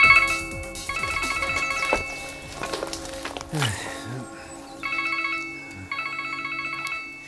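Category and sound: signal or alarm, mobile phone ringing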